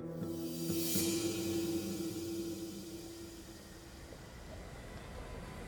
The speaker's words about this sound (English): With every mile they travel and every chuff of the steam engine, Pinkerton's anxiety reduces. Washington is now only 38 miles away.